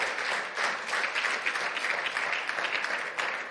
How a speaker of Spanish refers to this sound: Bendito sea Dios. Démosle fuerte aplauso a Él.